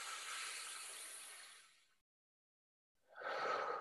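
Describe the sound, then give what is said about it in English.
A long, airy breath drawn in deeply through the mouth during a breathing exercise, a brief pause, then a strong breathy release of air, fairly loud with no talking. “So the breaths or inhales are the big breaths in and letting go.”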